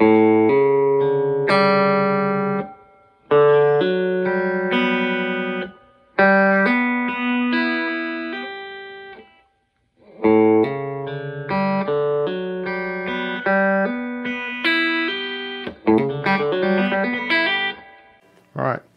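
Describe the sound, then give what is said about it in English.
A guitar plays a bright, quick lick with left-hand hammer-ons across the D, G, B and high E strings. It is repeated in several short phrases separated by brief pauses, the notes ringing clearly and fairly loud with no talking. “But what you do is you have, when you add the left hand in, you have these hammer-ons.”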